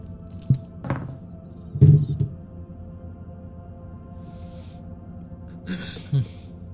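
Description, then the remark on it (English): Large dice are rolled for a discipline roll check, tumbling across a table with a few dull, low thunks and clatters spread over several seconds, with one heavier knock in the middle and quiet pauses between. “I could not tell on my big dice if it was a 6 or a 9.”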